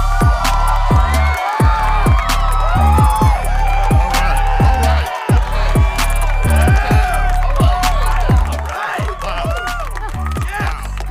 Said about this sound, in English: Wow. Were you expecting the crowd to be like that? I didn't expect that. I'm pleasantly surprised. It's always too loud in my ear.